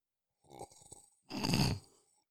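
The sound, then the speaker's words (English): A theatrical, drawn-out slurping sip of a drink, followed by a louder, breathy satisfied exhale. The two sounds come in quick succession with no talking. “Dramatic sipping.”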